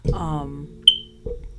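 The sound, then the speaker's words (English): A single short, high-pitched chirp from a smoke alarm signalling a low battery, sharp and fairly loud, sounding once between stretches of a person talking. “what is that? It's like a cricket. Oh, that's a loud fucking cricket.”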